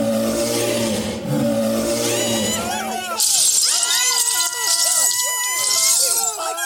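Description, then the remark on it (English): A man standing 7 foot 2 gives a deep, sustained growling roar imitating a bear for about three seconds, then a loud burst of applause and high-pitched screaming from a crowd takes over. “And he does a pretty good impersonation of a bear.”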